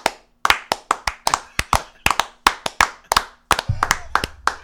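A slow clap: about fifteen sharp, crisp hand claps at a steady, deliberate pace, alone with no talking, with a low rumble creeping in under the last few claps.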